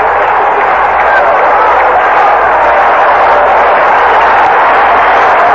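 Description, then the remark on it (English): A capacity crowd at a baseball stadium in Oakland cheers in a loud, unbroken roar that holds steady for several seconds, a dense wash of voices with maybe some clapping mixed in and no single voice standing out. “And this crowd here in Oakland, a capacity crowd, coming alive.”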